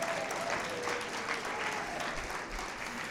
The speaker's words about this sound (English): Well, then we don't need to clap. All right. No, we do. We clap. There we go.